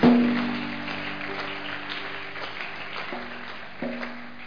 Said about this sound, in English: You clap for Jesus if you are helping.